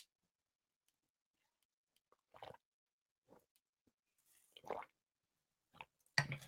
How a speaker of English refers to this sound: I'm just going to have a sip of drink.